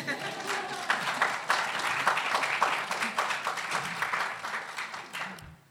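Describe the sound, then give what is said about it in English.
An audience applauds a review panel of art critics steadily for several seconds, a dense, crackling wash of many hands clapping at once that stays fairly loud before tapering off at the end. “Ladies and gentlemen, that's your panel. Yes, go on, applaud.”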